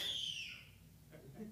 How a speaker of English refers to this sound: That was a screech. I thought there was an owl in here.